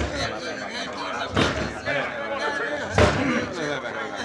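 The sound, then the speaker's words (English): A door is bashed with two heavy, booming, loud blows about a second and a half apart, while agitated voices carry on in the background. “Bust his door down, boy!”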